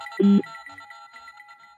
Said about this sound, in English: Phone call coming in.